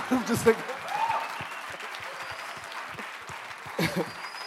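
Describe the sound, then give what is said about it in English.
A church audience claps steadily for several seconds for a former rugby player being introduced, a dense patter of many hands at moderate loudness, with voices briefly rising over the applause at the start and again near the end. “And should we just stop there and clap?”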